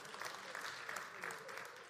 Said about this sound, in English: Praise the Lord. You can clap.